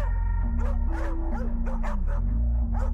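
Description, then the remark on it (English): Dogs bark loudly in a rapid string of yips and barks, about eight in three seconds, over a steady low droning hum. “Get the damn dogs!”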